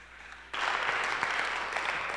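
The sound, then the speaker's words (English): A church audience bursts into clapping for Jesus after a brief quiet moment, a dense, steady wash of many hands that holds at an even, fairly loud level to the end. “Clap for Jesus.”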